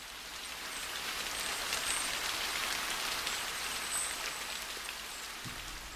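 Steady rain patters on cement, stone and a plastic mat, a dense, even hiss of countless drops with faint higher ticks, continuous, with no voices.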